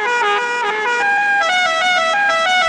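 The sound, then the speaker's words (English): A loud car horn in a film scene blares a quick run of stepping notes, like a musical horn playing a short tune, sustained for a few seconds with no talking. “His car horn.”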